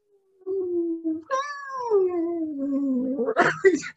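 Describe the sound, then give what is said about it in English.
A voice imitates a moaning dog: a low steady whine, then a louder drawn-out moan that slides slowly downward and ends in a rough, breathy burst, with no other sound. “And so in life, I found myself just moaning like that dog.”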